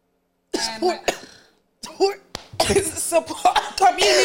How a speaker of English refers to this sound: I just have to clear my throat.